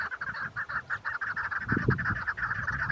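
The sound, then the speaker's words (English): Chukar partridges call in a steady run of repeated, raspy clucking notes, fairly loud and mid-pitched, with a low rumbling noise underneath. No one speaks. “I'd been showing him lots of chukar photos and videos that I'd taken, and he especially enjoyed the chukar sounds.”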